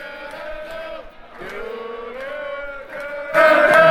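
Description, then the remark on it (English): The crowd at the Ring of Honor live event Unauthorized at Turner Hall Ballroom in Milwaukee, Wisconsin cheers wildly, a dense wall of overlapping yells and whoops that holds steady, dips briefly, then surges even louder in the final moments. “Here, as the crowd goes crazy.”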